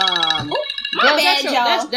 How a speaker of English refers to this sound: My phone, I be forgetting. It be having noises coming out of it. That was my bad.